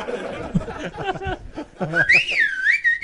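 Someone chuckles and makes voiced sounds, then whistles a clear, wavering melody that slides up and down in pitch, fairly loud, through the last second.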